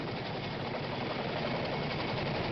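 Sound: chinook helicopter arriving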